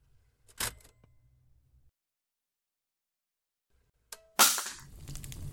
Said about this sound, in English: Shit, I dropped the recorder.